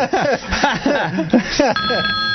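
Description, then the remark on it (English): A person talks, then a steady electronic telephone ring starts and continues clearly on its own, loud, like an incoming call. “Do you hear that? I heard something. We have a caller.”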